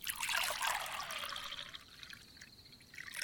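Wine pours steadily into a glass for a few seconds, a soft trickling splash whose tone rises slightly as the glass fills, with no voices present.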